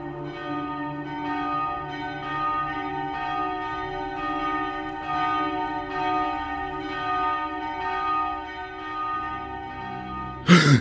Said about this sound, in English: What was that? Church bells? Church bells ringing in the night. Surely that can't be something.